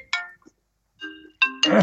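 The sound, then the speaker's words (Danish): An electronic incoming-call ringtone chimes on a computer, although it is switched off, in short, bright tonal bursts, clear, ending in a louder, noisier jangle. “Jamen, jeg ved ikke, hvorfor den ringer på min computer også, for den er sådan set slået fra.”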